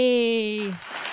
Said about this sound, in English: Huge what a, audience. What a rousing applause. And then they just abruptly stop.